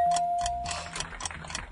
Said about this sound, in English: I hate the timer.